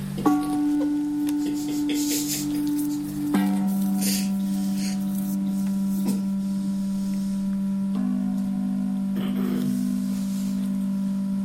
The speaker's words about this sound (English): Wait, we're going back into turning the volume knob on the gong.